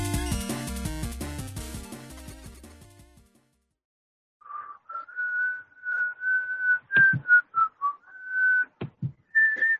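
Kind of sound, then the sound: human body sound, person whistling a tune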